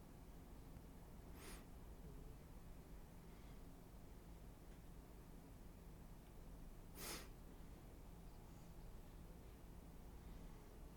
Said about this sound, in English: That fucking slight cough as she started speaking.